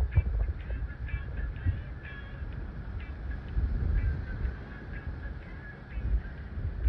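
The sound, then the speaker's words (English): Repeated honking calls from a group of geese or similar birds over a low rumbling background, as the birds fly away. “I think there were some birds in her area because they just flew away.”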